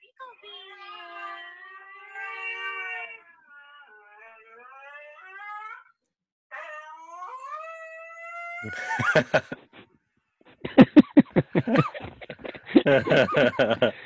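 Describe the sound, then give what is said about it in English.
A husky in a YouTube video howls in long, wavering, rising yowls, fairly loud, then gives way to a burst of harsh crackling, buzzing noise pulses near the end. “It was a husky going Super Saiyan.”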